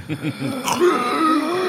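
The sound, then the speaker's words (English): A voice imitates someone's labored, wheezy breathing while sleeping: a few strained, groaning gasps, then a raspy rush of air trailing into a thin, whistling wheeze, fairly loud. “Pooch doesn't so much snore as, like, belaboredly breathe.”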